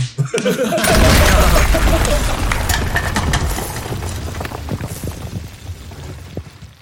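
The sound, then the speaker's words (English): Fireworks explode in a rapid, loud barrage, a dense crackling roar of overlapping bangs that peaks early and then thins into scattered sharp pops and booms. No one speaks. “He's like, look, Master Echo, I found all the fireworks.”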